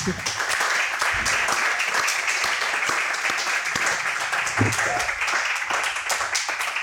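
A crowd applauds steadily for several seconds, dense overlapping claps forming a loud, even wash of sound, with a brief murmur of voices mixed in, a round of applause for a guest at a talk for the good work they are doing.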